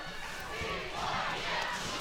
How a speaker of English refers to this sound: You hear the BYU fans here in attendance cheering and chanting for BYU.